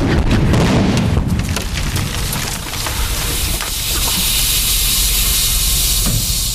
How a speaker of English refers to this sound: So Vince steps out the door of the arena, steps into his limousine, and the limousine blows up.